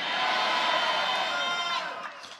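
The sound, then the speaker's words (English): A church audience shouts amen together in response to the preacher's call, a loud, dense roar of many voices held for about two seconds before it trails off. “Somebody shout amen like thunder.”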